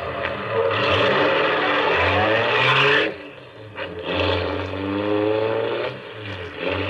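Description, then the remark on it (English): A taxi engine revs and pulls away, a loud, steady rumble with rising and falling tones as it accelerates, briefly easing off midway before building again. No voices are heard. “I heaved a sigh of relief as we pulled away.”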